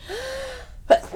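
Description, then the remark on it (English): A single sneeze: a short rising intake of breath, a brief pause, then a sharp, explosive burst of air, with no talking around it. “Bless you.”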